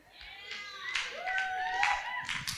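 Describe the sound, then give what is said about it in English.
A crowd claps at moderate volume in a loose, uneven patter, with rising whoops and cheering voices carried over the top throughout, giving Jesus a clap at a prayer gathering. “You guys want to give Jesus a clap?”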